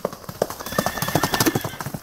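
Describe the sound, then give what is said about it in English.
Hooves of a doctor's coach mare, ridden in an escape from an asylum in 1903, clip-clop in a quick, steady rhythm at moderate volume, with a horse's whinny rising over the hoofbeats. “on August 9th, 1903, he stole the doctor's coach mare from the asylum and made his final escape.”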